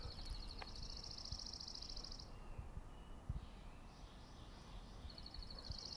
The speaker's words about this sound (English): Hear the bird song there. Dawn chorus. Favorite time of year. Springtime. The dawn chorus gets going.